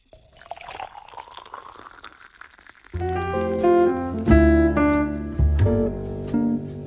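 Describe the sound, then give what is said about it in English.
Coffee, a Brazil Cerrado from a roaster in Cleveland, Ohio, pours steadily into a cup for about three seconds, its pitch rising as the vessel fills, before a loud bright musical jingle takes over. “Now, let's get into the drip of the day.”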